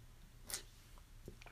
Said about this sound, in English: With my water. Whew, I'm out of breath. I gotta take a sip.